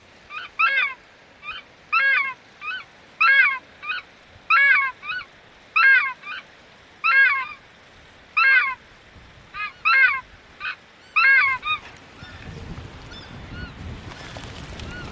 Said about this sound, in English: my job is to play takahē calls. So I'll just get out the little loudspeaker system and give a spray of calls